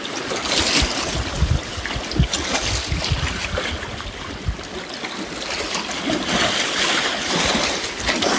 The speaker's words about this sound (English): Big energy coming to you from Gitchigami, Lake Superior. Feeling into this surging water. Ice is gone now.